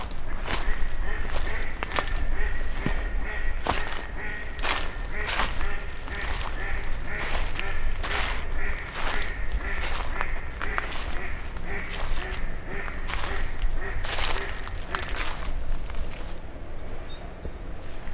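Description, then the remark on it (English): Repeated bursts of splashing and wing-flapping as waterbirds scuffle in a territorial dispute in the water of a flooded creek, with quacking calls mixed in over a steady low rumble of flowing water. “You can hear a lot of flapping in the water.”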